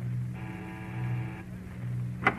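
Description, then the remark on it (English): A doorbell at a duplex on a Hollywood street buzzes once in a steady, harmonic-rich tone lasting about a second over a low constant hum, followed by a brief sharp click. “We'll ring this bell, and that'll be the last one.”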